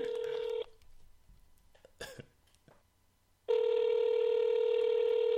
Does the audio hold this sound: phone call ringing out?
yes